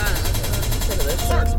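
A rapid volley of loud gunshot sound effects, dense and continuous, rattling away like automatic fire over a heavy low rumble with no clear pause.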